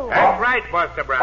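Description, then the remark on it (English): A dog, Tige, Buster Brown's dog, barks a few times in quick bursts, apparently imitated by a human voice, with a man talking just before and after. “That's my dog, Tige.”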